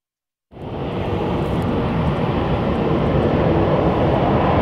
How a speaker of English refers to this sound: Salmon 30 Salmon 2, a 91,000-pound plane painted with a 129-foot king salmon design, flew from Seattle through Southeast.